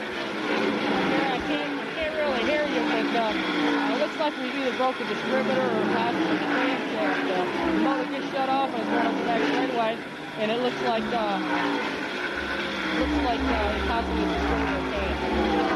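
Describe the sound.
A Buick stock car engine, started up in the racetrack garage area while the crew works on its faulty distributor, idles and revs steadily, loud and continuous, with indistinct voices mixed underneath the mechanical roar.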